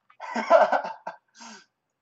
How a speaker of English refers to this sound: Oh God, I started coughing too as soon as you got here.